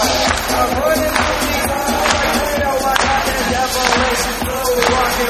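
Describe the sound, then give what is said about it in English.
A large morning crowd at Star Wars Celebration claps together in unison on a host's commands, sharp collective claps landing roughly once a second over a steady roar of crowd noise and chatter. “Clap.”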